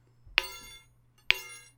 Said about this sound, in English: Can we have the bells again? You'd like the bells?